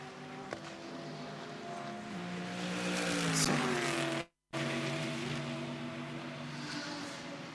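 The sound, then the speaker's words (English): A race car engine whines steadily with layered harmonic tones as the car comes out of the pit lane during a race, its pitch shifting as it revs and pulls away, fairly loud and continuous, broken by a brief cut of silence midway. “Now here comes Gilles Gounon out of the pit lane.”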